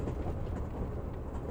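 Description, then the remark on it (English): A steady, low rumble of an overnight train rolling along rails through Europe at night, continuous and even, with a dense low-frequency drone and faint rhythmic texture, no voices. “Tonight, you're about to go on an overnight train ride through Europe.”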